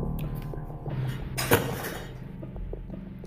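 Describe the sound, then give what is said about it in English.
A crooked chair creaks and shifts, with a low groaning strain throughout and one sharp wooden clunk partway through; no voices. “Sorry for that. It was just on my chair, my crooked chair.”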